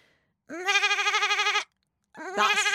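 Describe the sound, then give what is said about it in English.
A person imitates a sheep with two loud, wavering bleats, a long quavering 'baa' followed after a short pause by a second, shorter one, each with a strong vibrato. “Right, there's two things I'm really good at. One of them is a sheep, and one of them is a dolphin.”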